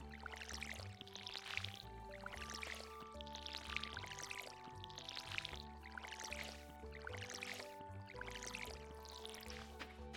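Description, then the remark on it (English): A watering can pours water on plants in short splashy bursts, repeating roughly every two seconds over steady background music, moderately loud with no talking. “Just water our plants.”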